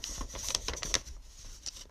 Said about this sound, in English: Oh, there's like a folded up paper in here. What does this say? Okay, I'm going to open something.